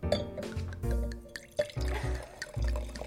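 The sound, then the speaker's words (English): Glugging of rosé wine being poured into a glass, with uneven bursts of liquid splashing and dripping over about three seconds; no voices. “That's rosé. That's some rosé being poured.”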